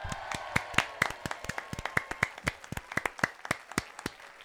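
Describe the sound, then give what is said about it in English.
An audience applauds the guest Della Dane in sharp, distinct claps, fairly sparse and uneven, as if from a small group, steady for several seconds with no voices over it. “As the crowd calms down.”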